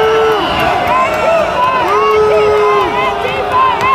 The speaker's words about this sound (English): You hear him screaming, Antifa, Antifa, Antifa. Guy is pounding on a window. He's wearing a helmet with a Trump sticker on the back. And he's got a stick.